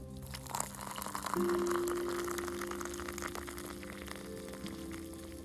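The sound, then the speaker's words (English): Water for coffee boiling in a whistling kettle whose whistle is not sounding: a steady bubbling, hissing rush with a low droning hum underneath, holding at a fairly even level for several seconds with no one talking. “Oh, it's boiling.”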